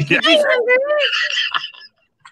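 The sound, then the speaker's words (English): A human voice imitates a roar: one loud, strained vocal burst with a wavering pitch that slides downward, lasting under two seconds, then silence apart from a faint click. “Listen, his roar.”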